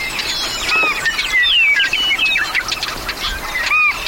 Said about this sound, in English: With a camera around my neck, I passed this meadow by a dozen times. I was oblivious to this whirling world of willets, swallows, snipes, and wrens.